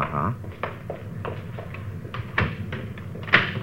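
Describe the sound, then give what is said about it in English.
A door being closed: several soft clicks and knocks of handling, then a sharper latch-like thump near the end, over a low, steady background rumble. “Closing that so they won't know anybody's been here, huh?”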